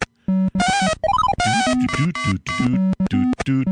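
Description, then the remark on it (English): Commodore 64 video game sound effects: a loud, rapid jumble of electronic bleeps and buzzy synthetic tones, including a quick rising-and-falling chirp, with no one talking. “Now, if you're hearing this and thinking, boy, it sounds like Donkey Kong.”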